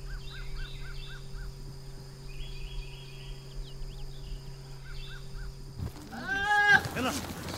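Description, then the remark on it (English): A goat lets out a loud, wavering bleat near the end, after several seconds of faint bird chirps over a steady low background hum. The goats are up in trees in the countryside of Essaouira, Morocco. “Ahead, yes, those are goats in those trees.”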